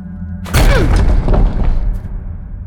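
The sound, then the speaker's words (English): A single heavy, forceful blow against a door lands with a loud boom, followed by a rattling, crashing clatter that trails off over a low steady hum. “Ready to knock, Chief.”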